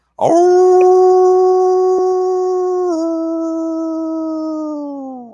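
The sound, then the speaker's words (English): A person imitates a howl: one long, loud, sustained vocal tone lasting about five seconds, with a small dip in pitch midway and a slow downward slide toward the end. “you know, the rest of us didn't really object, because I can howl too.”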